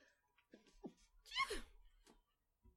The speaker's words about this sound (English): Excuse me. It was a sneeze. I don't have another one.